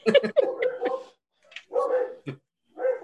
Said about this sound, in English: See, even Kyle wants to come. Here, you can hear him. In the background. You hear Kyle off in the distance barking.